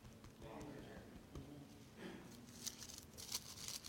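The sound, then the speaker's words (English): Many thin Bible pages flip and rustle at once in church in bursts of papery crinkling, like a room full of people turning pages together, with faint murmuring voices underneath. “Love to hear the sound of those pages turning in church.”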